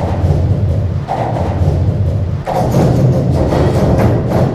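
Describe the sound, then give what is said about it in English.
Sounds recorded by microphones placed on the bridges crossing the River Rhine in Germany, manipulated in a studio into Michael Rusenberg's work Cologne Bridges Symphony, form a loud, dense, continuous low rumble with a gritty texture, faint thuds scattered through it, and an abrupt shift in tone about halfway through. No one speaks. “Michael Rusenberg placed microphones on the many structures that cross this famous waterway in Germany. He took the sounds into a studio and manipulated them into a work he calls Cologne Bridges Symphony.”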